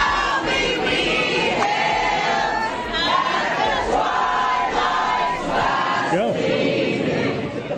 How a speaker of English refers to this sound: While the crowd became chaotic during proceedings, the board decided to halt public commentary, which angered the crowd, who started singing the Star Spangled Banner.